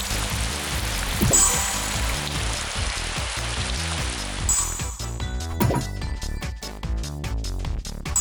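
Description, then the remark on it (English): A steady, hissing video game downpour with lightning, in a weather game's two-player mode, pours over a thumping, rhythmic game soundtrack, then drops away about halfway through, leaving the music playing alone. “Gee, lightning. Downpour.”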